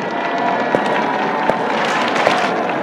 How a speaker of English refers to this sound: Look, as Dr. Weiss is entering the shul ahead of the Rebbe, he's being greeted by clapping and cheers for his work, dedication, menschlichkeit, and love for the Rebbe.